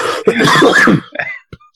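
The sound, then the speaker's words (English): A loud, raspy cough or throat-clearing burst, followed by a few shorter, fainter coughs trailing off, with no speech. “We're laughing and coughing here.”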